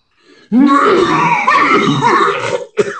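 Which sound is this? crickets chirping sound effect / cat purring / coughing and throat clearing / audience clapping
coughing and throat clearing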